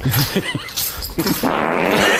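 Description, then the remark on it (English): A chair scraping and creaking as it shifts, a few short rough bursts followed by a longer, steady grinding scrape that stays fairly loud to the end. “Chair that, moving.”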